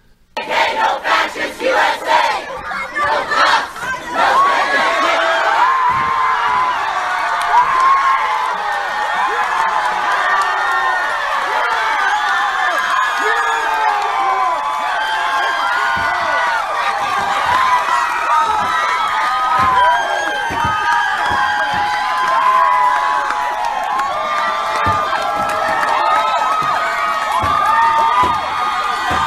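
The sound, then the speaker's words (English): A large Taliban crowd screams, yells and chants Allahu Akbar together in a dense, continuous roar as a 1,500-year-old statue of Buddha is destroyed, with sharp shouts and whoops rising above the din throughout, loud for the whole stretch. “They are just charming, aren't they? Just screaming like hyenas, those little animals.”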